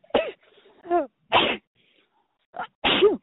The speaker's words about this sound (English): Excuse me, I just sneezed a little bit.